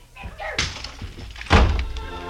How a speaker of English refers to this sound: She grabbed the handy oversized ashtray and let it fly at us, then beat it.